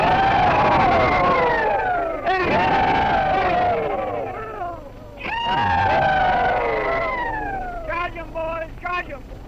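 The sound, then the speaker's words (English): A group of old Civil War veterans let out a loud, sustained, high-pitched rebel yell in several waves, their wavering whooping cries overlapping, ending in a burst of short, choppy yips. “Ladies and gentlemen, I have the pleasure of announcing to you that we are going to make an effort to repeat the old rebel yell.”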